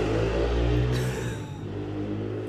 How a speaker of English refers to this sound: That's him just gone on his motorbike. He's just left now.